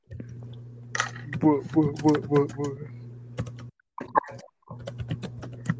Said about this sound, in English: What are you typing?